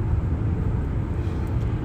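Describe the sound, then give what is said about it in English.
A steady low rumble of a car cruising along a two-lane back road through Virginia on a drive from Tampa to Vermont, with constant engine and tire drone and a faint hiss above it, no voices. “I am on a back road because the interstate got backed up, so we are cruising for a bruising on a 2-lane through Virginia on our second leg from Tampa to Vermont.”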